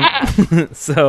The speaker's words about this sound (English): Is it a goat? I don't even know what it is.